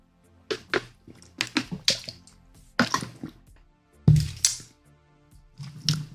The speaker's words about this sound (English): So that being said, we'll do a shot. We'll go ahead and get into it, my guy. Cheers.